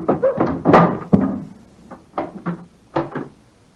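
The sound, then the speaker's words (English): Irregular wooden thumps and raps against the door of an elephant house, several loud hits early on followed by a few lighter knocks spaced apart, with no voices. “Knock again, old fellow, will you?”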